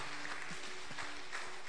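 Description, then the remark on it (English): An audience clapping together in church, a dense, fairly steady patter of many hands, with no one speaking over it. “Oh, yes, to clap.”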